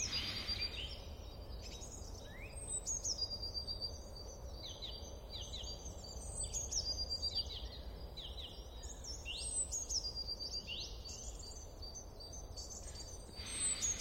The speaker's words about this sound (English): and the faint sound of birdsong. See if you can tune into the birds and just notice how that makes you feel whilst continuing to deepen your breath.